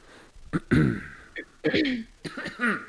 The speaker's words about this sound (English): Starting to get coffee. I mean, coughing, whatever.